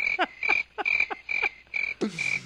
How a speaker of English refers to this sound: It sounds like crickets.